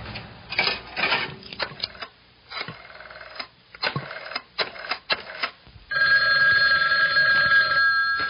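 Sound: telephone ringing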